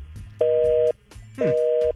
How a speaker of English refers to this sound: Busy signal. Is that what you were going for? Was the busy signal? That's not what I was going for.